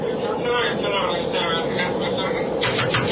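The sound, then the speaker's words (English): A steady, loud roar of jet engines inside a commercial jet airliner flying high in the sky, a constant cabin drone with faint, indistinct voices murmuring beneath it. “Aboard a commercial jet airliner, aloft high in the sky.”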